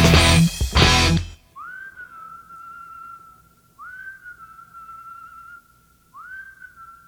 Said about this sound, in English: So at the very end of the song, I would, I whistle.